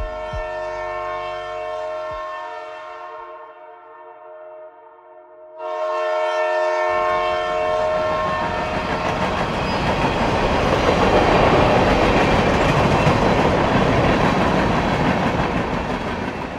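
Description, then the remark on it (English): A train horn blares in long sustained tones as a train approaches, then the loud rumble and rhythmic clickety-clack of cars rolling past on the railroad tracks fills the scene, steady. “That next morning, a train engineer was making his way down the railroad tracks when he saw something up ahead.”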